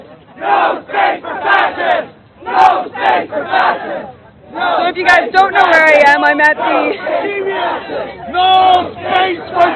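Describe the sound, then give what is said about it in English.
A large crowd of Antifa protesters dressed in black, in Canada, chants the slogan 'no space for fascists' in loud, rhythmic bursts of unison voices, then breaks into sustained, overlapping shouting and yelling, energetic like a street protest. “So Antifa, they're shouting, no space for fascists.”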